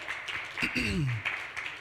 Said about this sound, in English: I want you all to give our panelists a hand clap.